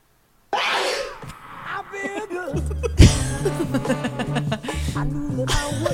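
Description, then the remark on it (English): A loud, breathy sneeze bursts out, then is chopped and repeated over a funky groove with a punchy bassline and steady beat, turning the sneeze into a rhythmic musical hook in a listener-made remix shared on SoundCloud. “We're going to have to play it again so we can hear the sneeze again.”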